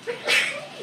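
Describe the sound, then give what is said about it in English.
A single sharp sneeze bursts out, a quick hissy blast of breath that fades within a moment, moderately loud. “Bless you. Bless you.”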